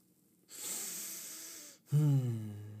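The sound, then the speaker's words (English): Someone clears their throat: a long, breathy rasp followed by a short, low voiced grunt, with no speech around it. “I'm tired of clearing my throat.”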